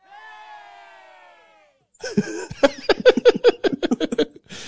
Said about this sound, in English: That one's low. I don't know why it's so low. It needs to be louder. That's funny. Impressive. It's just a crowd of people going, yay! Yay! That's it.